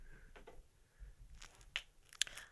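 A knee joint crackling on the way down: a scattering of faint crunchy clicks builds to two sharper, louder pops near the end, over a low background rumble with no talking.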